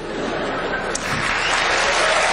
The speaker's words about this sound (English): Applause break for Romney.